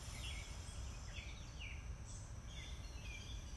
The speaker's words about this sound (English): And then tune into the sounds of the lovely choir of the birds here, and then whatever sounds are where you are.